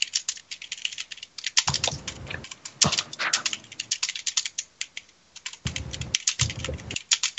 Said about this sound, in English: Slow typing.